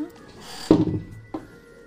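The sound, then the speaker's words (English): Two dull knocks on a door, a heavier thud followed by a softer one about half a second later, low and hollow against a faint background hum. “Well, I'll knock first.”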